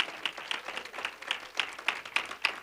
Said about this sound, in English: Now, if you love this, clap your hand. I won't look at you.